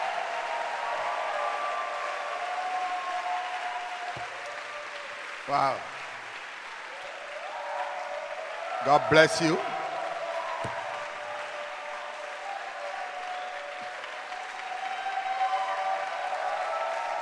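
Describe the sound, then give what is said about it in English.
A large church audience applauds steadily for the whole stretch, clapping for a bishop, a dense, even wash of clapping, while a voice briefly speaks over it and a couple of louder bursts rise midway. “Clap your hands for Bishop Dag.”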